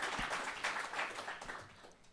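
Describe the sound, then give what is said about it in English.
A crowd at a mental health panel event claps steadily, a dense, even wash of applause that holds for a couple of seconds and begins to fade toward the end, with no clear voices above it. “Clap for her.”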